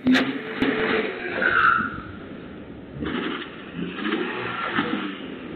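Someone gets into a car at night: a couple of sharp thuds near the start, like a door shutting, followed by muffled shuffling and a low, steady rumble. No one speaks.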